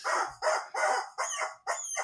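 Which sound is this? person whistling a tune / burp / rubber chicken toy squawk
rubber chicken toy squawk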